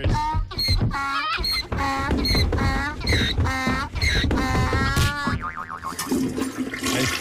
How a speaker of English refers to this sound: I still don't know why there's a toilet flush in it.